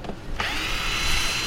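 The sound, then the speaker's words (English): A power drill whirs steadily as it is used to secure things, its motor spinning up after a brief start and holding a continuous high-pitched whine, with no voices present. “Tim runs around, Dorothy braids flopping all over the place, securing anything he can with a drill”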